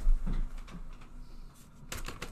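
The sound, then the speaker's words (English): A few dry, papery taps of a piece of paper against a table, tapped like a Black Amex card, irregularly spaced with a quick cluster near the end, moderately loud with no talking. “Oh, yeah, I'm waving it's a paper black... around, pretend it's a Black MX. But they're, like, tapping it”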